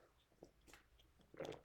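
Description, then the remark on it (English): A quick, quiet sip of water: a few soft wet mouth clicks and a small slurp, ending in a brief louder gulp, with no one talking. “I am going to take a short sip of water, and then we will get to Eric Redman.”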